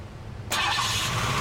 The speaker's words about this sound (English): Oh, Enzo's car's turned on.